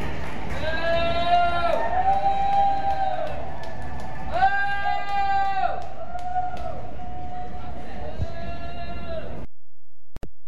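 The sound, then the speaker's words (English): Loud, drawn-out booing from a crowd at Dodger Stadium as a group is introduced comes in three long swells, the sustained jeering voices rising over a steady rumble of background crowd noise before cutting off abruptly. “there were two people in the stands and they're both booing.”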